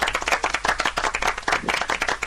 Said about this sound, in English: Give him a round of applause for being a good sport.